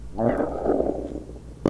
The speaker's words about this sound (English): What was that? It was weird. What was that noise? It was like a burp. Like a bubble from your stomach? It was a burp building up from the bottom of my stomach.